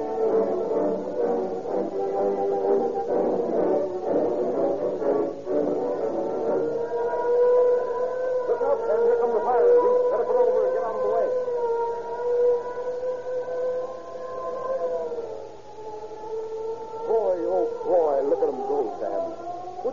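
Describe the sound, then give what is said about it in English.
Several fire engine sirens wail together, their long rising and falling tones overlapping loudly and steadily for the whole stretch, with a faint voice underneath. “I can keep up with them, all right. I use the same gasoline those fire engines do.”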